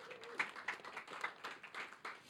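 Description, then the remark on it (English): A brief burst of soft applause from a church audience for a 30th anniversary, many hands clapping irregularly in a dense patter that stays fairly quiet and even throughout, with no one speaking over it. “Yes, you can clap.”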